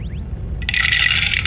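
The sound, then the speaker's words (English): Several dice (four green, a blue and three purple) clatter down through a Staggering Dragon dice tower: a couple of sharp clicks, then a dense, bright, continuous rattle of many small hard pieces tumbling together, fairly loud, with no voices. “Wow, look at the way that the Staggering Dragon dice towers handle all those dice. It's a really nice dice flow.”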